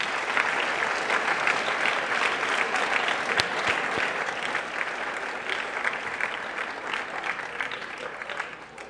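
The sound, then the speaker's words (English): Sustained audience applause for a career panel, a dense steady wash of many hands clapping at a fairly loud, even level for the full length, with no voices standing out. “Let's give our career panel a big round of applause.”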